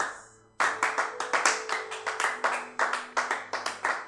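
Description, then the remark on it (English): An audience claps for Jesus, bursting in after a brief quiet moment into loud, steady, rapid clapping that keeps a rough rhythm, with a faint sustained musical tone humming underneath. “Can we clap for Jesus?”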